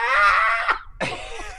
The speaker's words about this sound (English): Yes, she just walks out for 20 seconds. What's going on? And then she turns around and lets out that shriek.